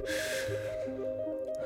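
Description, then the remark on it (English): A man takes a few steps back, breathing deeply: a heavy, breathy exhale rushes out at the start, then fades beneath a steady humming, tonal backdrop. No one speaks. “taking a few steps back, breathing deeply.”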